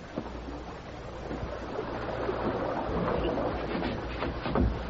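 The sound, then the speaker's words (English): A steady, broad rush of falling water fills the whole stretch, swelling slightly louder toward the end, with a low rumble underneath and no voices. “They slipped through the tinkling waterfall and into the cavern behind it.”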